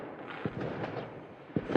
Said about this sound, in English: There you go, Punky. That's your fireworks.